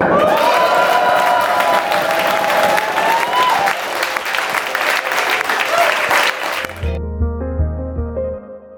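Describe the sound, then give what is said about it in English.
A live audience at a Blockchain Insider Live show at Rocket Space in London claps and cheers loudly for several seconds, with whoops rising over dense applause, before it cuts off into a short, bright musical jingle. “We have the crowd, but we also have some guests.”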